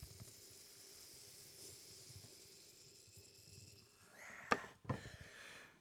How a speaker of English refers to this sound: All right, for those of you who can't see, I just took a cast iron skillet out of the fireplace and badly poured it into my AeroPress. And now comes the satisfying plunge. Listen to this.